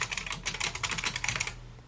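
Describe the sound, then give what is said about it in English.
Rapid, uneven clicking of keys on a computer keyboard, fairly clear, lasting about a second and a half before stopping; no one speaks. “I kept my mic on while I was typing.”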